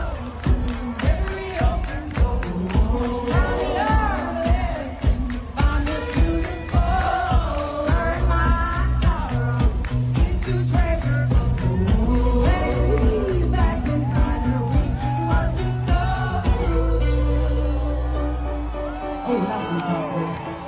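A live concert song at Hyde Park, London, with a steady beat, bass and bright vocal melody, backed by a loud crowd singing along and occasional whoops, before the music thins out near the end.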